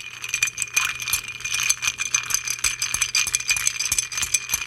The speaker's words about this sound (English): Add ice to the mixing glass and give this a good vigorous stir.